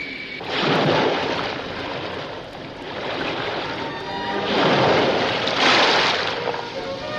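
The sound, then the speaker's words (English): Heavy ocean waves surge and crash in two big swells over a constant roar of rough, churning sea during a shipwreck, loud, with no voices. “Quick there, pour oil on the sea! Our only hope.”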